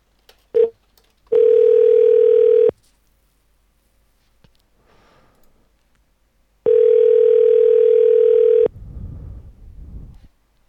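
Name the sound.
telephone ringing tone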